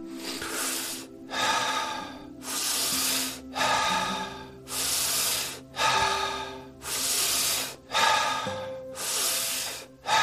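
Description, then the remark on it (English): Deep, forceful breaths in and out during a breathing exercise, loud, repeating in a steady quick rhythm of about one per second, with a faint low drone underneath and no talking. “Continue breathing. It doesn't matter how many breaths exactly.”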